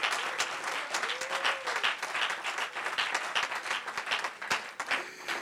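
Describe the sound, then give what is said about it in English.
An audience claps their hands mightily unto the Lord in dense, sustained, loud applause, with a few voices calling out faintly beneath the clapping. “You five that are standing, clap your hands mightily unto the Lord.”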